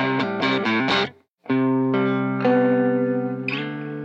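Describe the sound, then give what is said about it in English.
An electric guitar, a 2V model with two pickups and a vibrato bar in a brown shell crackle finish, plays with a slightly overdriven tone: four quick strummed chords, a brief pause, then several loud chords that ring out and sustain, with no talking. “This is called a 2V, two pickups, vibrato.”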